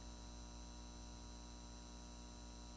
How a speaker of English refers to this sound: You cross the threshold. The buzz of the arc sodium streetlights are replaced by the cold buzz of fluorescent overhead lights.